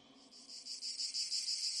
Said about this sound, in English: Okay, did you guys do cricket sounds for me? Because... I'm not married. What? No. We would never do that. You guys totally did the cricket sound.